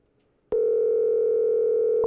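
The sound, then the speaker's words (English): A loud, steady electronic phone tone starts abruptly after a short quiet moment and holds unbroken, the ringing of an outgoing call to a mother while waiting for her to answer. Nobody speaks. “Come on, answer the phone, Ma.”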